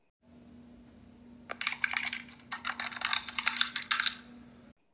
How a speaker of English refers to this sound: Next, there were only the sound of joysticks and button press.